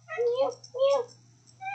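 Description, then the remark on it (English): A cat meows twice in quick succession, each call drawn out and rising then falling, with a third meow starting at the end, over a steady low hum. “Do I smell like kittens? I do.”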